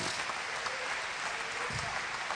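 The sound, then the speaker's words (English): An audience claps hands together in praise of God in a steady, dense wash of applause, many overlapping claps blending into a continuous crackling roar that holds level throughout. “Why don't you clap your hands with me and praise him?”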